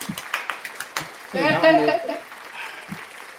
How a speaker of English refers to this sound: Since you played that round of applause, I feel like, you know, this next topic does deserve a round of applause.